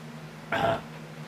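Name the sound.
taking a drink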